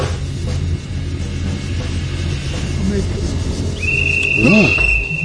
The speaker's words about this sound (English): Choo-choo train. Yeah, I got the window open.